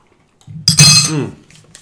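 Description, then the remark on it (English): Glasses clink together in a toast while drinking Hot Ones Los Calientes Barbacoa hot sauce, one bright, ringing strike that fades over a second, with a faint low murmur underneath and no talking. “Cheers, boys. Cheers. Cheers.”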